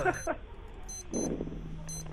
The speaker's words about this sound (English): There's something wrong with my alarm clock.